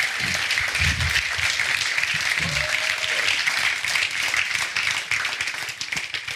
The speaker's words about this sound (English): And so we want to celebrate that this morning. If you guys want to give him a round of applause.